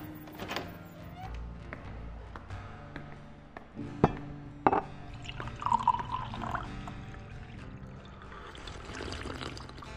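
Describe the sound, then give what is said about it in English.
A couple of sharp clinks and thunks, like glass being set down, followed by the steady splash of a drink being poured into a glass. “Or worse, or you could head back into your home, pour yourself a stiff drink, and hear what I have to say.”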